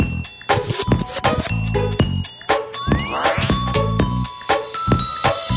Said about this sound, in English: and I'll play the jingle if I can find it.